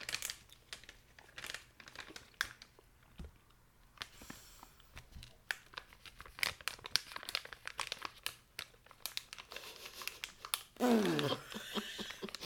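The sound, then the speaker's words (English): Loud crinkling of a plastic snack bag in irregular bursts, with bits of crunching and tumbling pieces, as the whole bag is tipped and shaken toward the mouth. “Simple and effective solution. Put the whole dang bag in your mouth.”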